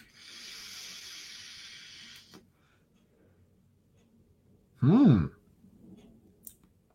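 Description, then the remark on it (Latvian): A long, steady airy draw on a rainbow-coloured vape pod with no adjustment settings, worked by pressing a button, lasting about two seconds, then quiet, followed by a short, forceful breathy exhale of vapor, with no talking. “Tā, nu ko, kā jau es teicu, regulēšanas te nekādas viņam nav, vienkārši spiežam pogu un velkam tvaiku, nu to pamēģināsim.”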